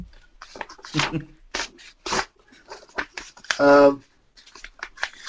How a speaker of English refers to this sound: What am I doing? You wonder what the hell's going on here? He's folding paper, listeners. He's folding paper.